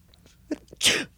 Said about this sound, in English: Why don't I give it a try? Sometimes I can get myself to sneeze if I pinch my nose.